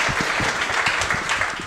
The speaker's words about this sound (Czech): Gratulace, to je taky na potlesk, ale ne?